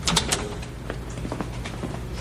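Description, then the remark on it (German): A door in an empty bank opens with a quick clattering burst of bright, scraping clicks at the start, followed by softer knocks and rattles over a steady low hum. “Durch diese Tür”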